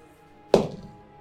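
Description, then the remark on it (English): A die rolled for a perception check drops onto a hard surface with one sharp, hollow thunk that quickly fades, landing on a 6, heard alone over a faint background hum with no talking. “Roll perception.”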